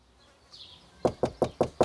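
Five firm, evenly spaced knocks on a wooden front door, clear, following a faint buzzing hum; no voices. The knocking is at the front door of a guitarist's New Jersey home in the summer of 1966.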